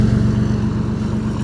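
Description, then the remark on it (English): A truck's engine rumbles loudly and steadily as it drives past, a deep, throbbing low drone that fills the whole moment without any voices. “Wait for this truck to go by.”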